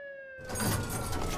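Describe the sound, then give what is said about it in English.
A police siren holds a steady, slightly falling wail for a moment before a loud, harsh burst of noise, like a door being flung open, swamps it. No one speaks. “Wait, do you hear that? Wah! I'm out of here, see? Oh, shoot, it's the fuzz.”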